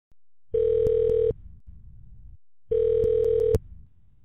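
Two ringback tones from an outgoing phone call, each a steady electronic buzz about a second long with a quiet pause between, heard clearly through a phone line with faint line noise.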